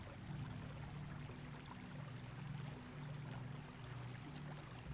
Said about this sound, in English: And here we will sit under this waterfall, focusing on our breath and the waterfall's healing energy. Letting our thoughts be carried away by the waterfall.